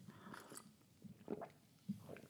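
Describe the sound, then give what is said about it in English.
A few soft sips and mouth sounds of someone quietly sipping coffee come in short bursts with small pauses between them and no talking. “Coffee sip break.”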